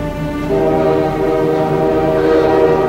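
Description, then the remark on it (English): A loud train whistle sounds in one sustained, multi-toned blast that swells in about half a second and holds steady to the end, over a low rumble of the train. “Listen to that whistle.”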